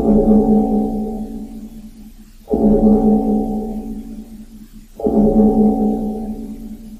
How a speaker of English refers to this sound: Let's ring that cloister bell.